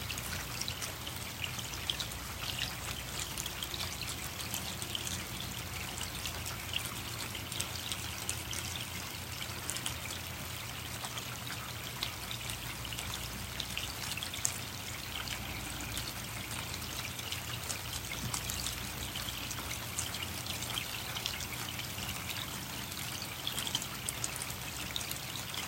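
Steady rain pours and patters without a break, a dense, even hiss of drops with a low rumbling undertone and no voices.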